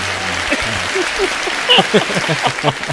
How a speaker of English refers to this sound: Can we get a quick applause? Oh, I don't have the soundboard. Oh no. I'll put it in post.